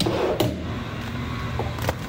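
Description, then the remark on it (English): A heavy latch clunks open on a large insulated freezer door at the National Science Foundation's Ice Core Facility, about minus 26 centigrade inside, followed by a steady low rumble and hiss of machinery, with a second sharp click near the end as the door swings. “Okay, so I'm gonna go into, I'm basically opening a large freezer door.”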